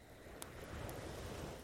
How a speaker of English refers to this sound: The sound of the ocean waves in the background are always there.